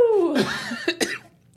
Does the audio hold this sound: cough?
yes